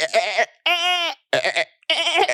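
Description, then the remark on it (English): A person imitates a goat with four loud, wavering bleats in quick succession, each strained and nasal with a shaky vibrato, separated by brief pauses. “Okay, what is goat? Goat means yang gao.”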